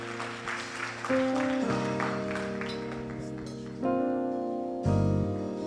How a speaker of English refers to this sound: Come on, y'all give the minister a hand clap today.